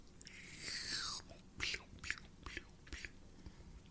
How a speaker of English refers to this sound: Yeah. I need a sip of coffee.